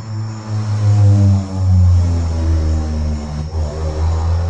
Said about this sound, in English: That was a loud car right there. I'm sorry about that.